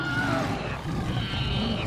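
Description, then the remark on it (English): A Bengal tiger roars loudly, a deep, rumbling growl that holds steady for nearly two seconds with no voices around it. “Governor Dix shoots the Bengal tiger in the street.”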